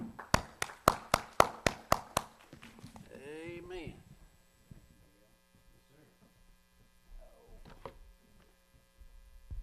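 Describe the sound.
A short run of about eight sharp, evenly spaced claps from an audience giving a speaker a big hand rings out for two seconds, then stops as a voice and a low hum take over.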